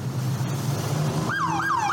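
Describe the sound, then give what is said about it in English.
A low engine-like hum gives way to a loud state trooper police siren, its wail rising and then falling in about three quick, repeating sweeps. No one speaks. “State troopers. There it is. Yeah, I think I heard it. It's like a hum.”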